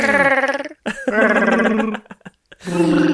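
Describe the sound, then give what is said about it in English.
A voice imitates Chewbacca's Wookiee roar in three loud, throaty bursts, each a gravelly, wavering howl that slides up in pitch, separated by short gaps. “What about a little Chewbacca?”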